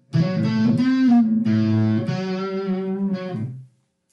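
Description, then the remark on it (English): An electric guitar plays through an amp set to its crunch setting, with a crunchy, lightly distorted tone: a few sustained chords and notes over about three and a half seconds, steady and fairly loud, then stopping cleanly. “crunch.”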